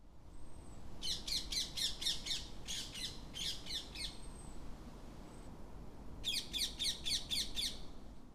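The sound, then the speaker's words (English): Shrill, screeching ring-necked parakeet calls in rapid repeated bursts, three runs of harsh squawks separated by short pauses, loud over a low background hum, with no talking. “Ringnecked parakeets are very, very noisy, and their call is a shrill, screeching noise.”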